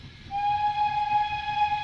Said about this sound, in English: I was asleep in my hotel bed when in the deepest night, I was awakened by the sound of a railroad whistle as it passed through the town.